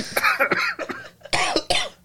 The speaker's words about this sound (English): Fuck y'all, I ain't coughing like that.